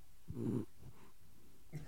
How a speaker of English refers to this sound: The dog's snoring and I'm trying to see if we can pick this up on the mic.